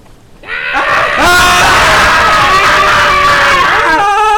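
Loud, sustained screaming from several voices at once, layered wails rising and falling over about four seconds, starting abruptly after a brief quiet moment and staying intense throughout.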